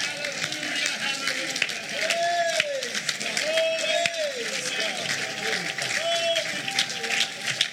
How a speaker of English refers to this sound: If you believe that, stand to your feet and give God a hand clap of praise.